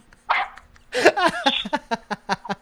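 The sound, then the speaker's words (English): A dog barks: a couple of loud, harsh barks followed by a rapid run of shorter, sharper yaps in a steady rhythm. “The dog got mad at you.”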